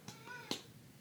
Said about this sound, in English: That cat wants to chime in on this, but we're not going to let her. She's not a regular co-host.